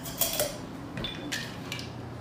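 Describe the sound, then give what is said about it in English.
A metal cocktail strainer clinks and rattles against glassware as a stirred lemon balm julep is strained over fresh ice cubes, with several short, bright metallic taps spread unevenly over a couple of seconds, moderately quiet, with no talking. “Grab our cocktail strainer.”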